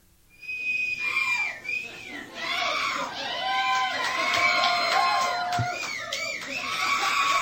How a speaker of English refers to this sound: And that's the crowd. They're just going wild for us.